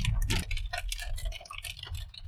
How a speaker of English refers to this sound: Sorry about the sound of the rain. I did stop recording when it got the loudest, when it was those great big drops that are the size of nickels.